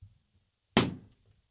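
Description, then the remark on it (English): A balloon, one of four lined up, is popped to reveal which team is picked as the winner. It pops once with a sudden, loud, sharp bang that quickly fades away, following a moment of near silence with only faint low rumbling. “And we're going to pop the balloon, and whatever team is in it, that we're going to say is the winner.”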